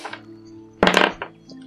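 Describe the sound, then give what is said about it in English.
Dice rolled for a constitution check in a tabletop game clatter across a tabletop in one short, sharp burst of knocks and clicks, followed by a quick smaller rattle as they settle, over a low steady hum. “You got to stop rolling where there's stuff getting in the way of your dice.”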